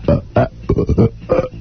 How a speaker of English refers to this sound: Wait a minute, hold it. I got a little thing I've been saving for you. Machine gun belching.